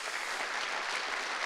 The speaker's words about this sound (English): Church, can we give them a big hand clap?